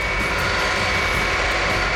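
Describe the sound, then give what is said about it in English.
Steady, loud roar of a C-5 cargo jet's whining engines, growing louder until almost overhead, a broad constant rumble with a faint high whine riding on top, continuous with no voices. “The distant but unmistakable sound of the C-5's whining engines. Gradually, the jet noise got louder until it was almost overhead.”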